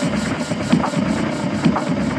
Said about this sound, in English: Techno. Techno bass. Ha ha ha. Techno sound.